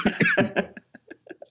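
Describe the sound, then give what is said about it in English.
Someone coughs in a quick run of four harsh, loud bursts, then tapers off into several softer, weaker coughs and breathy catches. “Can you stop coughing? You're distracting me.”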